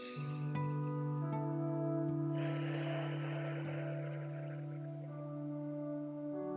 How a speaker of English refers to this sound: The way I do that is I put my hand on my chest and I just breathe in really, really deep through my nose. Hold for a couple seconds and breathe out really deep through my mouth. And make sure all the breath is out when you release your breath.